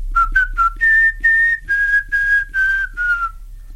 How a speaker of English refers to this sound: I used to whistle the first part of the Some Mothers Do Have 'Em theme